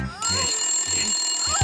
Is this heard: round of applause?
no